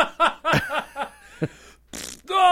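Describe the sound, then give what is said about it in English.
A string of loud, sputtering fart noises in quick, uneven bursts, followed by a short hissing spray and a final drawn-out squeaky blast, with no talking. “That refers to a shart, obviously.”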